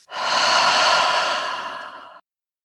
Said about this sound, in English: And finally, to breathe in a moment to just care for yourself and to release and breathe out that big burden of responsibility so many of us in the nonprofit world feel to pour everything into caring for others.